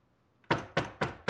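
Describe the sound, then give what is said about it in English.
Four firm knocks on a door by a man arriving in a film scene, evenly spaced about a quarter second apart, loud, each with a short hollow ring, after a brief quiet start. No voices. “The woman opens the door thusly.”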